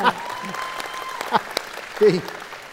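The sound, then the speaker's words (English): Scattered clapping from a few men in an audience, fairly light and uneven, with some voices murmuring underneath. “All right, the guys are clapping.”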